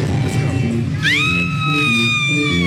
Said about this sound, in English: This lady's annoying. Yeah super is. Annoying. Holy hell, with the screaming. And the laughing.